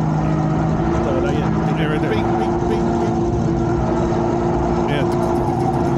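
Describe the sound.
A loud engine drones steadily throughout, its low rumble and humming tones sounding labored and strained, with faint voices mixed into the background.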